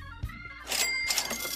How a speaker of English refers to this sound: When I ask you for that cash register, you don't jump ahead of me.